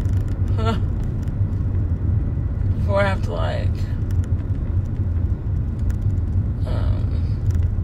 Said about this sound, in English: Guys, I wish I could just keep my foot on the gas and just go, go, go, go, go. But of course, we cannot. Because bumper to bumper. I'm trying to go slow in the car in front of me so that I have more time to keep my foot on the gas.